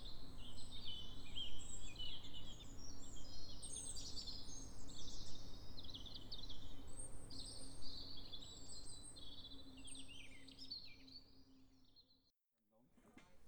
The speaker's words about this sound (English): Yeah, let's just have another listen to those birds.